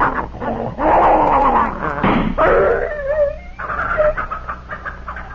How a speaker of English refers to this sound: I never thought you had it in you to shoot even a dog, Mr. Buchanan. I'm sorry, Mrs. Godfrey, but he was in such pain he'd have bitten both of us. Poor Tiger.